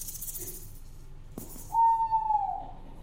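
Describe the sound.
A voice imitates an owl with one drawn-out, fairly loud hoot that slides slightly downward, following a soft hiss and a sharp click. No one speaks.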